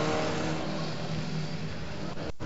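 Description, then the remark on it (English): A race car's engine roars loudly, a dense sustained revving as it pulls away out of the pits after a driver change, holding steady for a couple of seconds before cutting off abruptly. “Ricky's got out the car, so they are doing a driver change.”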